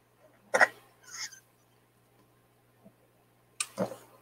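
A puppy coughs and dry-heaves in short, harsh, breathy bursts: two close together, a long pause, then another hacking pair, over a faint steady low hum with no talk.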